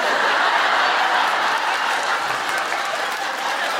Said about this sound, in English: Why is that getting a round of applause? I don't understand. What just happened? Is this like when Irish people laugh because I don't know things about Ireland and say them in a funny voice? Is it just me saying Waterford? That's not funny.